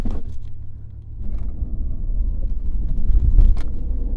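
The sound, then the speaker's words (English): Steady low rumble of a car on the move with open windows, road and wind noise washing in, growing a little louder after the first second, with a few faint brief clicks near the end. “So if you put the windows down, it won't sound as good. Oh. And now you got the outside noise coming as well.”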